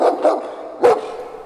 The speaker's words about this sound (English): The conversation is abruptly broken by a large dog bark heard from outside.